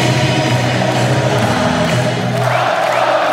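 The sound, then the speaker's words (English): A loud, dense hockey crowd at a World Juniors game between Kazakhstan and Slovakia chants Kazakhstan's name and sings its song together in sustained low-pitched tones, the roar steady and continuous throughout with no individual voice standing out. “Fans chanting their name, singing their song.”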